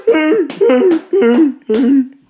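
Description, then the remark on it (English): A man's voice imitates a walrus with four loud, strained, honking bellows in a steady rhythm, each pitch wobbling up and down with a rough, throaty buzz and short pauses between. “I could do a walrus as well.”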